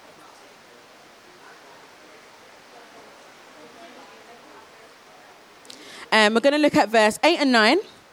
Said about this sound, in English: I'm just going to look at a few verses and then we can pray that the rain goes away.